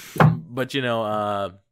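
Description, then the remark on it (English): A squeaking chair: a dull thump, then a drawn-out, slightly falling squeal with a buzzy, voice-like tone, lasting about a second. No one speaks. “Sorry about my squeaking chair.”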